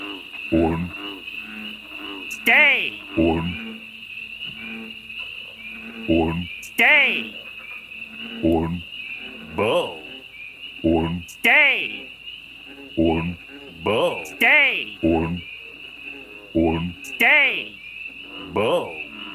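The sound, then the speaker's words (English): A chorus of frogs croaking in rapid, repeated bursts over a steady high insect-like trill, with loud calls recurring every few seconds, continuing throughout. “Holy shit, are those talking frogs?”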